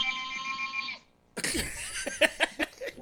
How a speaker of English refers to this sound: I thought a phone was ringing. I stopped and went, what the fuck is that? I didn't understand how.